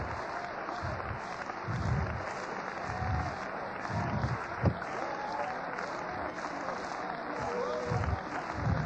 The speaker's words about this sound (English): Come on, clap your hands and praise the Lord.